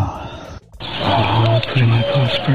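Low, hollow owl hoots repeat in short bursts over a muffled, hissy background, as if captured on a low-quality recording, with a brief dropout near the start.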